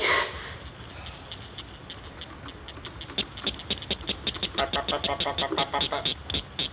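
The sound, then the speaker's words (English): A Blanchard's cricket frog gives its clicking call: a series of sharp, dry clicks that start sparse and quicken into a rapid, steady rattle, heard alone after a brief noisy burst at the start. “Let's listen to the clicking-like call of the cricket frog.”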